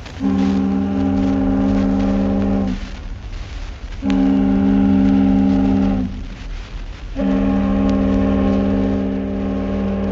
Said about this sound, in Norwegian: Der visler en dampsøyle opp av sirenen. Det var tilløpet. Så kommer båtens avskjedshilsen med veldig bassrøst I tre støt.